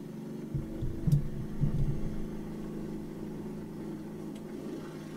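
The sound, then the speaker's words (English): A small ATV engine drones with a low, buzzing hum, surging and revving louder for a second or two before settling back into a steady, rough idle. No one speaks. “Turn off your fucking ATV, bitch.”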